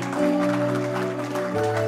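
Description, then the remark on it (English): An audience at a church service claps steadily over sustained organ chords, giving God a round of applause. The dense clapping stays loud throughout, and the chord shifts to a new pitch near the end. “Somebody give God a round of applause.”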